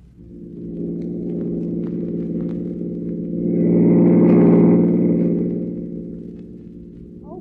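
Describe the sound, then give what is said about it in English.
A car engine drones steadily while driving in the city, a low throbbing hum that swells louder for a couple of seconds midway before easing back down. No one speaks. “pass that car in front.”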